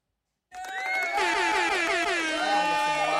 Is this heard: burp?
no